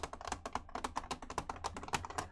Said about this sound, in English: And as you look down at the altar, there are hundreds of these little crawling scarabs. And these, like, you know, a combination of, like, these clicking sounds, these clicking insectoid sounds, and, like